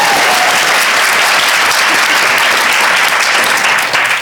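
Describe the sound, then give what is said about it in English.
Sustained audience applause for Reverend Angel Kyoto Williams, Buddhist sensei and author of Radical Dharma, fills the whole stretch, a dense, steady wash of many hands clapping, loud and continuous before tapering slightly at the very end. “One more applause.”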